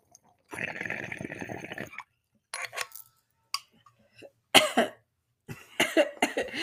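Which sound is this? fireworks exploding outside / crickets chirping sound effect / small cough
small cough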